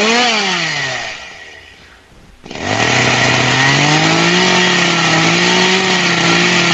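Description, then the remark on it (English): A loud chainsaw cutting a bike in half whines down and nearly stalls, then roars back to full throttle with a harsh, grinding rasp, as if biting into metal. It runs steadily to the end with no talking. “I just broke your chainsaw, Dad.”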